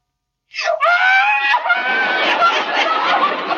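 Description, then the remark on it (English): A hungry baby wails loudly at almost 4 o'clock, feeding time, starting with a sharp rising cry and then breaking into a continuous, high-pitched, strained bawl with no pauses for breath. “Oh, that's not a baby. It's a time bomb.”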